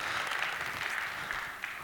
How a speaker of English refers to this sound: Amen. You can clap about that. That's a good clap. There you go. Amen.